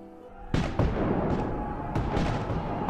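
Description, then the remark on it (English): Loud army cannon fire booms out in a sudden burst, followed by several more heavy blasts over a continuous rumbling roar, like a battle raging. “Life was certainly different to before, but I soon grew accustomed to the music of cannon fire and the dirt and camaraderie of life in the army.”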